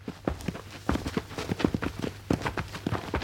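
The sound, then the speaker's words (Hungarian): Foley crowd footsteps: many overlapping footsteps shuffle and clatter at an uneven, busy rhythm, like a crowd walking together, with sharp heel strikes over a low steady hum and no voices. “Még tömeglépéseket.”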